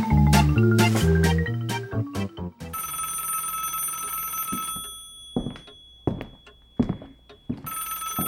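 A telephone rings loudly, an incoming courtesy call from K2 Double Glazing about windows and doors, starting with a quick run of stepped electronic tones, then a sustained bright ringing that stops, with a few dull knocks, before ringing again.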